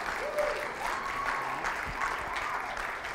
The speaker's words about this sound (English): And can we guys give him a round of applause? Come on now. Yeah.